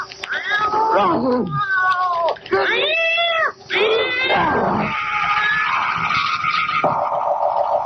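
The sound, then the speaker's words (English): A cat yowls loudly and repeatedly outdoors in thick fog, drawn-out wailing cries rising and falling in pitch, one after another with only brief gaps, ending in a sustained harsh caterwaul. “Here, kitty, kitty, kitty. Don't go away, kitty.”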